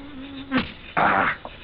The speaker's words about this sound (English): Mosquitoes.